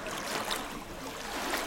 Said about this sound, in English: They were wet, too. Not just from the ale I was now spilling on their jostling, bumpy surface, but from the volumes of water being sloshed up between each plank.